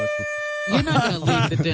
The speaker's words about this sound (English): how do you not carry a little one of those air horns with you for when JD falls asleep to wake him up?